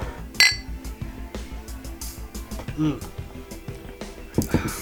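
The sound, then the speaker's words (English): Beer glasses clink together once in a toast, a single bright, ringing chime near the start, followed by a low murmur and faint voices in the background. “Cheers, Kanpai.”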